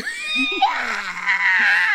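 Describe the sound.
A person lets out a loud, strained, shrill screech for about two seconds, voice wavering and rasping high-pitched throughout, imitating an unholy shriek as a mock mating call.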